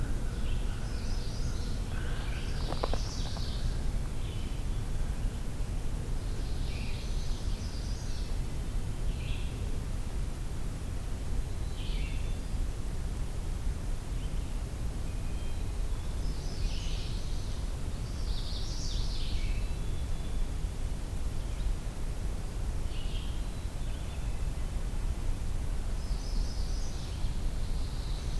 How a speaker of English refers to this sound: That's the magnolia warbler.